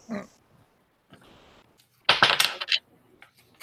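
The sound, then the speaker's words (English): Dice clatter and tumble across a hard tabletop in a short, loud burst of rattling clicks, preceded by a few faint scrapes and taps, rolled for a coordination test in a game. “God damn you, dice. I never roll well on coordination.”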